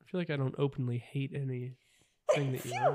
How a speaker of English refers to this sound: Sorry. Bless you.